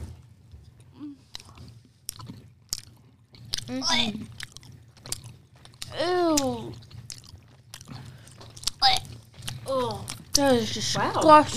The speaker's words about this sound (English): It's squishy. All right, here we go. 3. Everyone, 2. Put in your mouth and chew.